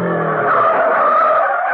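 A loud tire screech as a car skids to a halt at the back of the stands of a bullring, a sustained high squeal with engine noise underneath, lasting just under two seconds with no voices.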